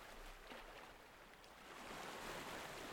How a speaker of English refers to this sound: This cove is just for you. sit, walk or paddle in the lapping waves.